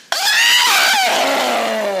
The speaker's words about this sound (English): Blew out a big fuse and the whole set went dark. Everyone remained calm until they heard the scream.